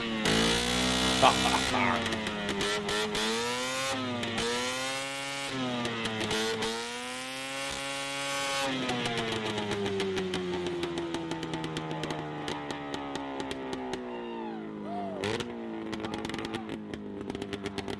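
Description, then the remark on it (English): A 1973 Arctic Cat Puma snowmobile with a 440 engine and a pipe coming out the front revs loudly and steadily at a loud pipe contest, measured 10 feet from its front, its buzzing two-stroke pitch rising and falling in repeated swells before settling into a sustained high whine with sputtering crackles. “73 Arctic Cat Puma. This one's loud.”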